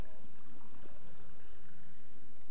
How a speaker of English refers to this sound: And in the same way, he took the cup. Having blessed it, he poured it.